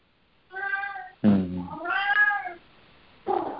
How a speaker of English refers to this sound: I've got a very loud cat right now.